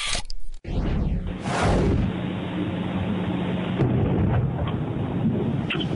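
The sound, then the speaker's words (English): A deep, heavy boom bursts out, followed by a long rumbling roll that slowly fades into a low, steady background rumble: an explosion early on a Saturday morning on Traverse Mountain in Draper, at the south end of the Salt Lake Valley, that shook homes. “Draper police are asking for your help investigating that explosion early Saturday morning on Traverse Mountain.”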